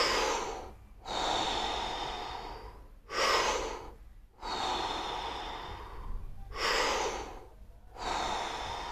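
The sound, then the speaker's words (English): Deep, forceful breaths drawn in and pushed out in a steady rhythm during a guided breathing exercise, about three full cycles with short pauses between, loud, with no talking. “Breathing all the air out.”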